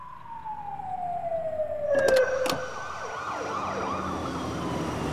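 Sirens of four police cars wail and warble over one another, a steady falling tone giving way to overlapping rising-and-falling sweeps, with a couple of sharp knocks midway. No one speaks.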